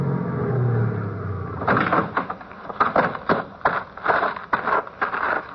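A car engine idles with a low, steady rumble that cuts off, followed by a series of clunks and rustling bumps, like car doors opening and shutting.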